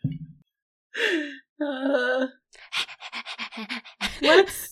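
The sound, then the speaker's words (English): A person mimics a dog panting with its tongue lolling out: a couple of whiny voiced breaths, then a quick rhythmic run of short, breathy huffs, ending on a strained, rising whimper. “It's just kind of, you know, sitting on the floor patiently, sort of looking up at you all and the others with its tongue lolling out.”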